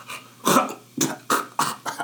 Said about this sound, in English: And then immediately start coughing.